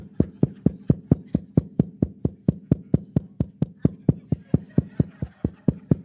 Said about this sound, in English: I stand at the door and what? Knock. And I knock. Man, isn't that disruptive? What if I just kept doing that all the whole service?